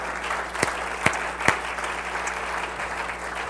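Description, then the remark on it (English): A church audience claps their hands unto the Lord in a steady wash of applause, with a few sharper individual claps standing out near the start over the dense, continuous patter of many hands. “Somebody clap your hands unto the Lord if you're glad to be a part of the church.”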